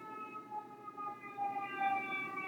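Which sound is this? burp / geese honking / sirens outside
sirens outside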